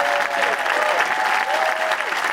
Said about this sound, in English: And before we go tonight, please, a round of applause for everyone who works at the Duchess and everyone on Light and Sound.